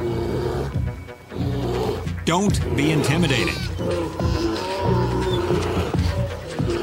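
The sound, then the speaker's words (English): A large mother grizzly bear roars and growls in deep, harsh bursts as she stands up to gray wolves, with snarling and yelps from the wolves mixed in, while a man narrates over the commotion. “Grizzly mom stands up to the gray wolves.”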